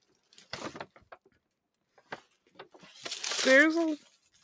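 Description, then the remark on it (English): Crisp paper crinkling in a few scattered bursts as a big gift bag is unwrapped, building to a longer, louder rustle near the end as a voice briefly exclaims over it. “More paper. Sorry for the paper.”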